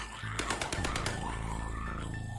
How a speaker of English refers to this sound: Outside is chaos. There's fire, gunshots, and hundreds of dead on the streets.